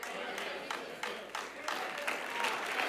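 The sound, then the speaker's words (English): A church audience claps and cheers during a sermon in a steady, dense wash of applause that swells in several waves, with no single voice standing out. “Some of you scared to clap.”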